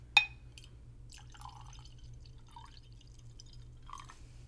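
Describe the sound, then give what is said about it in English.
A sharp glass clink, then wine trickles and glugs in short, uneven spurts from a bottle into a glass, quiet over a steady low hum, poured as Foley for a recording. “Can you please hand me the wine bottle?”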